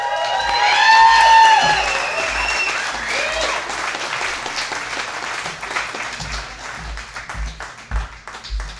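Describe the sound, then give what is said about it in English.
At a storytelling show, a crowd applauds steadily as the next featured storyteller comes up, with whoops and high cheers rising over the clapping at the start. The applause thins toward the end into a few sharper, spaced claps. “Do you like that when I came up, I gave myself my own cheerleader clap?”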